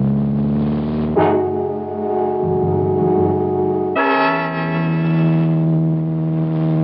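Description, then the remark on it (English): A loud, steady car engine drones with no talking, its pitch jumping upward in sudden steps as it revs and accelerates through the gears, a car that is not a racing model being driven too fast on a road. “Driving too fast. Slow down. I've handled cars like this at 170.”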